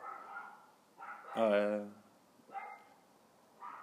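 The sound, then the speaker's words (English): Small dogs bark in an apartment in a string of sharp, high yaps, with one longer, louder outburst in the middle and shorter barks around it. “these dogs are going crazy. Lots of barkers in the apartment.”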